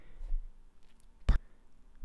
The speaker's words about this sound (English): My elbow hit the keyboard.